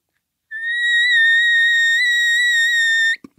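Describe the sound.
A single thin, high-pitched mosquito-like whine blown on a Maverick elk call amp reed, held steady for about two and a half seconds with a slight waver, then cut off sharply with a soft click.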